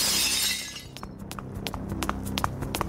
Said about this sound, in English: That's when I heard glass breaking.